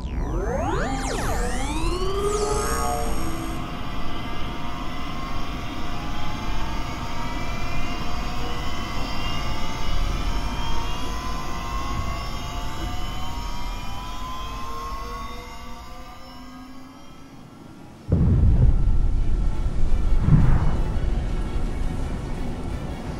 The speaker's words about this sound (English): Sounds like another explosion. No, sir. It's too small for that. Something launched from the city. It's heading our way. That's a missile.